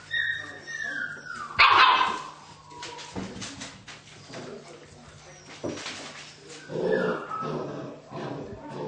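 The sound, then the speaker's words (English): Puppies squabble over a bone with high-pitched yips, whimpers and a sharp yelp, their scrappy noises overlapping in bursts while a person talks alongside. “That's pretty obvious here when you see these other puppies submitting to the fact that this puppy has the bone.”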